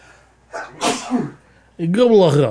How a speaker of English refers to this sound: I'm trying not to sneeze on the air.